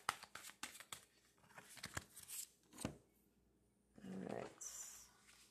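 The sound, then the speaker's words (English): A deck of tarot cards is shuffled, a run of quick riffling flicks and papery slaps followed by a longer rustling burst, with no talking. “I'm going to shuffle these up real good.”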